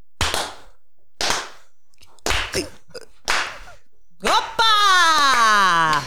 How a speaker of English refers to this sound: Tell us when you want us to clap. Start clapping. Okay.